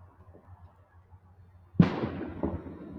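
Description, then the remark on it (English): A sudden sharp bang cracks out after quiet low rumbling, then rolls away in a long echoing decay with a smaller pop following, like a gunshot going off at a distance outdoors. “And I just heard another gunshot.”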